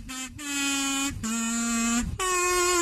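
A kazoo hummed into, giving a loud, buzzy, nasal tone in a few sustained notes with short breaks between them, the pitch dipping slightly in the middle note and rising again at the end.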